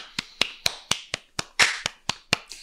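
A single person claps about ten times in a brisk, steady rhythm, each clap sharp and crisp at moderate volume, with no talking over it.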